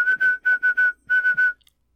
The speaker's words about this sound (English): You'd have to learn, like, everything you can play on a slide whistle, which is a short list. It's like two things.